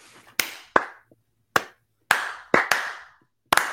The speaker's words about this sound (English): So slow clap for us.